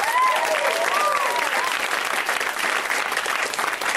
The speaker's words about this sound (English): It is a Tuesday, which means you put your hands together at the UCB Theater. You can clap for the comics who are backstage, they can hear you.